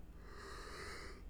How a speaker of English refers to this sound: Uh-oh. I feel like I got the yawns.